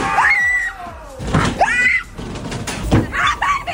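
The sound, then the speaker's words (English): Several high-pitched screams ring out in quick succession, loud, with shrieking voices overlapping amid thumps and bangs like doors slamming, as people go inside Kyle and Jackie O's haunted house. “And if you ever needed proof that Kyle and Jackie O's haunted house is scarier than ever this year, take a listen to the screams once they actually went inside.”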